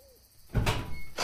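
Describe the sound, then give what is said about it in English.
After a brief quiet moment, a door is pulled open with the right hand, a loud, rushing scrape of movement that swells twice, fairly forceful. “Now, open the door with your right hand.”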